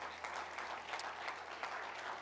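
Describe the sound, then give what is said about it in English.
An audience clapping hands to the Lord in a steady, dense wash of applause, many overlapping claps forming a continuous bright patter with no voices heard. “One more time, would you just clap your hands on the Lord?”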